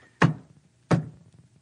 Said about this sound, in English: banging the table with his shoe. So if you don't know what that's about, look up Khrushchev and shoe.